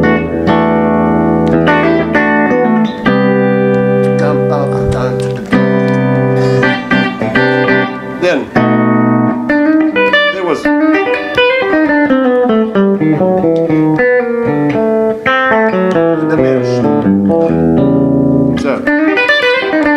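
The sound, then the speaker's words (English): Electric guitar awash in heavy reverb, chords and single-note runs ringing and blurring into one another, played loud and continuously with no talking over it. “Would you ever track with that much reverb on, or would you keep it dry?”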